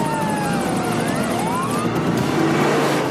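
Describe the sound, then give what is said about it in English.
A loud, steady jet engine roar fills the whole stretch, with whining tones sliding up and down over the dense rushing noise. Continuous, with no voices. “God damn it, don't play chicken with the goddamn jet.”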